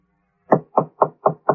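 Five firm knocks on a hotel room door at the Prince Hotel in a steady, even rhythm after a brief quiet moment, clear with no voices.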